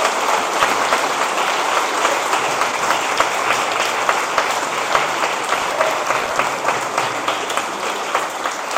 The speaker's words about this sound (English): So let's give a huge round of applause to all the moms who are here today.